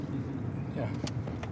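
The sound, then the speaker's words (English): A car rolls steadily over a rough dirt road at an entrance in Uruguay, its low rumble continuous, broken by a few short crunching bumps near the end, with faint voices underneath. “Oh, yeah. This is a dirt road.”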